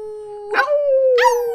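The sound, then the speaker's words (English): A person imitates a dog howl, one long sustained tone that swells twice into louder, rougher bursts, fairly loud, with no words. “It's like dog calling, but we're like cat calling, but dog like calling.”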